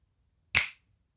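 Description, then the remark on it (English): A single crisp finger snap, made to end a guided meditation and bring listeners back to the present moment, rings out on its own, a sharp bright crack with a quick fading tail, surrounded by quiet low background hum. “When I snap my fingers, you are going to come back to the present moment.”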